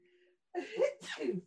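A single fairly loud sneeze, with a sharp inhaled build-up followed by a forceful burst, preceded by a faint steady hum.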